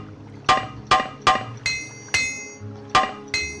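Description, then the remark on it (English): A video game repair hammer clinks against metal about seven times in an uneven rhythm, each bright strike ringing with high metallic overtones over a low steady hum, as it is used to fix a broken silver club. “I must flee from the ancestral tomb in order to use a repair hammer to fix my club.”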